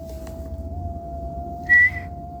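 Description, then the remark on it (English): A single short, high-pitched human whistle note cuts in loudly near the end, over a steady faint hum and low background rumble, with no one talking. “This is the third time we've gotten three whistles.”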